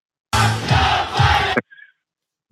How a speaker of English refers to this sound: They're cheering, saying, let's go, Brandon. She was trying to override the crowd as they were saying, fuck Joe Biden.